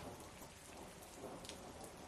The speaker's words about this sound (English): You know, it's loud and it's raining. What do you tell them?